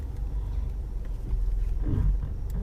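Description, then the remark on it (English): The brakes of the mother's car, driven around the block, give a low, rough groaning grind over steady engine rumble, swelling louder for a moment near the end before easing off. No one speaks. “Oh my god, listen to Mom's brakes.”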